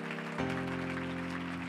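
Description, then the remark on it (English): A crowd claps their hands to the Lord in praise, steadily in a dense, continuous patter, with sustained organ or keyboard chords swelling in beneath the applause after a brief moment. “Come on, let's clap our hands.”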